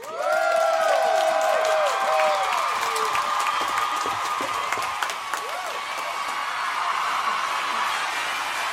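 A live audience bursts into sustained, loud applause, with high whoops and cheers rising over the clapping in the first few seconds before settling into steady, dense clapping.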